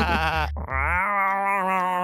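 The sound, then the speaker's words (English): A person's voice loudly imitates a goat, letting out a long, wavering bleat that breaks briefly and then continues in a sustained, quavering cry. “That is also how goats sound. I'm a goat.”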